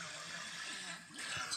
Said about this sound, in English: What in the world? It's bubbles from my shorts.